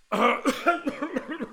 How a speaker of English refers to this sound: I also cough when I do a … impression. So we won't do that. Don't worry, I don't have COVID.